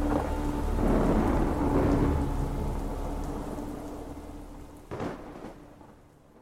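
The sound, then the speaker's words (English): A thunderstorm with steady rain hissing throughout and a deep rumble of thunder rolling in early, then a sharper crack of thunder near the end. No voices. “The figure had vanished into the storm.”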